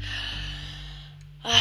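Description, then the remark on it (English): A long, deep, conscious breath drawn in during breath work (pranayama), airy and steady, followed by a brief louder rush of air as it shifts at the end. No one speaks. “And this is just bringing conscious breathing into our space.”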